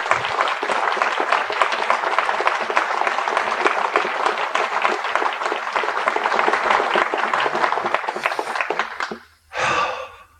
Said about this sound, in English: Yeah, people applauded the dumb shit you were saying.